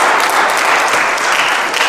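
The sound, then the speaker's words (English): A church audience claps steadily, giving the Lord a hand clap for Thanksgiving, the dense patter of many hands blending into a continuous, fairly loud wash of applause with no voices over it. “Come on, give the Lord a hand clap for Thanksgiving.”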